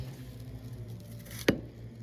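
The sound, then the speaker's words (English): A single brief, wet crunch as an apple corer is pushed and wiggled into an apple to hollow it out, sharp, over a low, steady background hum. “You just give it a little wiggle to get it into the apple. Out, you got your cored out hollowed apple now.”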